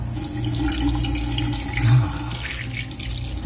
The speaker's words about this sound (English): I splashed cool water on my face. Oh, I felt better. Took my hat off and wetted my hair.